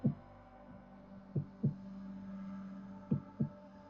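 A deep, muffled heartbeat thumps in slow lub-dub pairs, about three beats, over a steady low droning hum with no voices.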